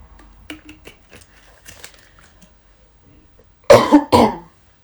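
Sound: throat clearing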